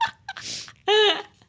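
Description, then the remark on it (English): A voice does a weird squawk impression: a breathy rasp, then one loud, nasal, strained squawk about a third of a second long, with no words spoken. “doing that weird squawk he always does.”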